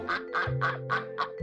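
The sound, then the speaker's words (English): A flock of around 500 Indian runner ducks, kept to eat snails and pests among the grape vines at the Vergenad Low wine estate vineyard in Stellenbosch, South Africa, quacking in a quick, steady series of about five raspy, nasal calls, each evenly spaced, over a low continuous hum. “The army of around 500 Indian runner ducks has a taste for snails, making them valuable employees if you want to keep your vines pest-free.”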